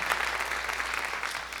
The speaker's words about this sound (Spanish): Yo quiero romper un poco el silencio aquí hoy. Quiero pedir que le des un fuerte aplauso y grito a Cristo esta mañana. ¿Puedes darle más o menos?